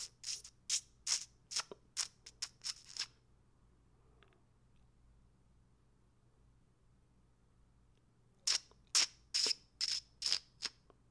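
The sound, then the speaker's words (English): A voice imitates a grasshopper with rapid, raspy, hissing chirps, two bursts of about eight to ten pulses each, separated by several seconds of near silence. “Here, this is how I think a grasshopper sounds.”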